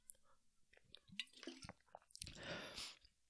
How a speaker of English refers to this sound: My bad, people, dry throat. Let me see, get a sip of this fucking water.